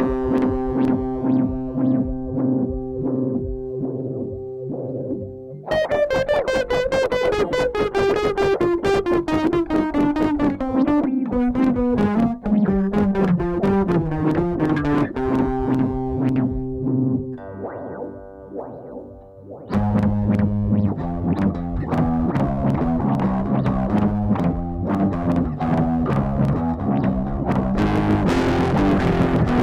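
An electric guitar plays through a Mimeophone delay mixed with a filter, fed from its regular CV input, giving a swirling, flanger-like modulated effect with sweeping pitch glides and a metallic, jet-like whoosh; loud and continuous, no voices.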